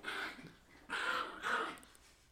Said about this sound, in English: Chill, bro. Can you hear our quail dog in the back?